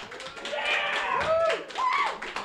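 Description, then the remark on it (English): Audience applause at a panel debate, voting that Pixar is the better studio: a dense patter of many hands clapping at once, mixed with scattered cheers and rising whoops from the crowd, sustained and fairly loud throughout. “Give a round of applause if you think that Pixar is the better studio.”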